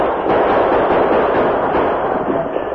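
A dense, continuous barrage of gunfire crackles and pops without pause, loud, like many guns firing at once as an attacking horde of Apaches fires on a fort and its few defenders fight back, with no voices heard.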